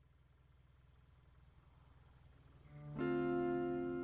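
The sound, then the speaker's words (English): A car engine turns over with a low, pulsing rumble that builds, then catches near the end and settles into a loud, steady running drone. No one speaks. “Dearest one, start the car.”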